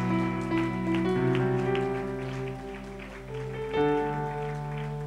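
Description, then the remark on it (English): An audience claps steadily as a clap offering to Jesus, a dense, continuous patter while sustained keyboard chords play underneath, the clapping swelling briefly near the end. “Give a clap offering to Jesus and to them.”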